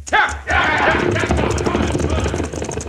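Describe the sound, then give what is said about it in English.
Galloping hooves of an outlaw gang's horses riding off at the pass over Rocking Chair Mountain pound in a rapid, dense rhythm, loud at first, with a busy rumble of movement and voices shouting underneath. “Now, with the stage escaping down the mountain, all the outlaws but one mount their horses.”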